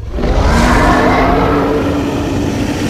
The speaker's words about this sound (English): Dylan focused on the dinosaur-like beast that swam by their geode, and his eyes widened. It's the Loch Ness Monster. Right on cue, the beast stretched out its long neck and let out another bellowing roar that sent ripples through the water.